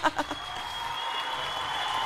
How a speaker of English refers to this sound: I'm going to give myself a round of applause.